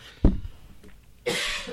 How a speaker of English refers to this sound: Don't cough in the fucking mic, fuckface. Fuck. I didn't even have any and I coughed.